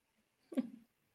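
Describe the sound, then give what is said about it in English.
A single short cough, a sharp breathy burst that quickly fades, standing alone against near silence with no talking around it. “Okay, so that's why I think, hang on, I'm going to cough.”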